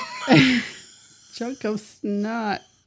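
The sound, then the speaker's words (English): A rough throat clearing: one harsh, raspy burst up front, then a few short voiced grunting noises after a brief pause, all fairly loud and with no other sounds around. “I gotta clear my throat like that.”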